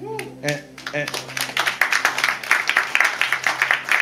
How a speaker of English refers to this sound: And y'all keep clapping. Y'all didn't do the work.